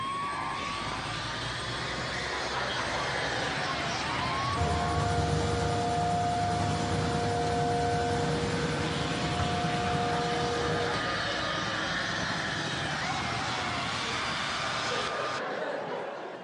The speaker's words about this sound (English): I'm watching the news, and there's a big police car chase in Saskatoon, Canada on the news.